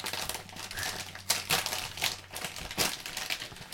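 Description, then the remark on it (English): A bag of rippled crisps being opened from the back, with bursts of bright, crackling crinkles that come in uneven waves and quick sharp snaps, steady and fairly loud throughout with no talking. “You gonna open this up through the back way?”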